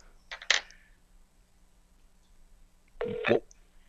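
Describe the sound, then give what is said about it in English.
A telephone rings twice, heard through a phone line as short bursts about three seconds apart, fairly quiet, while calling a woman who does not answer, with no talking. “She's not answering the phone.”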